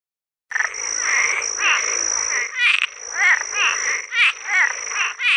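A Cuban tree frog gives a series of raspy, creaky calls, each a short rising croak, repeated about a second apart over a steady high-pitched background chorus, fairly loud.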